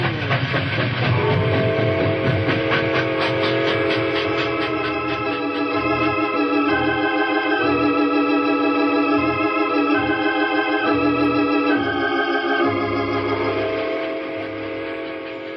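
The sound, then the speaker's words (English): A locomotive train rumbles steadily down the tracks, loud, with rhythmic clanking wheel beats and a sustained whistle-like tone running over the mechanical chugging. “A locomotive can outrun a horse any day. We'll be down the hill and gone before they can get started.”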